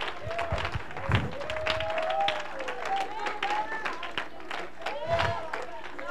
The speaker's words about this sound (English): Oh, come on and clap your hands, everybody. Clap your hands, everybody.